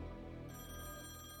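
An old-fashioned telephone bell rings loudly, a rapid continuous metallic trill with no voices present; a phone call coming in for Amelia Earhart at her work at the immigration house.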